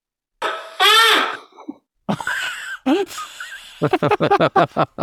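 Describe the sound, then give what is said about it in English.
A person waking from sleep in a bedroom: a sharp gasp bursts out, followed by a wavering, high-pitched scream in two rising stages, then a string of short, ragged panicked cries and breaths. No words are spoken. “Now you can hear me sort of gasp awake and then a sort of two-tiered scream as I try and work out what's above me.”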